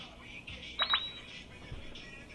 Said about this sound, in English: Phone going off because everybody has been seeing what I've been posting about.